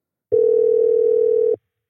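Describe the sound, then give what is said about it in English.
A telephone dial tone as a call is placed: one steady, unbroken mid-pitched hum that sounds for just over a second at even loudness, then cuts off abruptly. No voices are heard. “Let's give him a call.”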